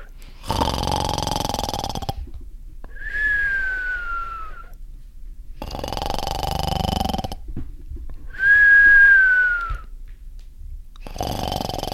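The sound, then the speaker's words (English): A person snores over and over, each loud rasping inhale followed by a thin, high whistling exhale that slides downward, repeating in a steady cycle with no talking. “It took like five snores.”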